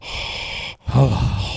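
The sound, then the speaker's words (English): A voice imitates heavy breathing heard over the phone: a long, hissy inhale, a brief pause, then a voiced, groaning exhale, fairly loud with no other talking. “Yeah, those phones are I could have sworn I heard you breathing.”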